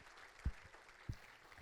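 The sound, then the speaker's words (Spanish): An audience applauds softly for the Lord, a steady wash of many hands clapping, broken by two dull low thumps. “Démosle un aplauso fuerte, let's give a loud hand clap to porque the Lord.”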